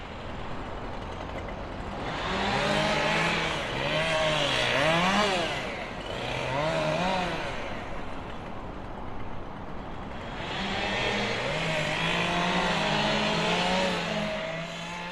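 Two chainsaws cut into a large spruce in a garden on Rauðileikur (Red Creek) street, a loud, steady buzzing engine roar whose pitch repeatedly rises and dips as the saws rev, surging in several intense bursts with no voices.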